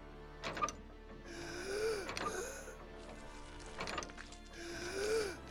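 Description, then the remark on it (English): A man's labored, rasping gasps of breath repeat in an uneven rhythm, each inhale harsh and wheezy with a snoring, stertorous quality, fairly quiet, with no talking. “The poor man's breathing came in uncertain gasps.”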